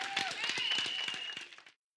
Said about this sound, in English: Come on, let's get a Lord a hand clap of praise.